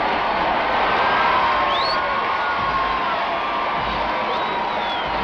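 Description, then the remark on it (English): A vast crowd of hundreds of thousands of the Queen's subjects roars and cheers for Queen Elizabeth and Prince Philip in a continuous, loud wash of voices, with a few higher whistles and whoops rising briefly above the steady din. “In the same golden fairy tale coats that carried her to the coronation in June 1953, Her Majesty and Prince Philip, to the thunderous cheers of hundreds of thousands of her subjects lining the room.”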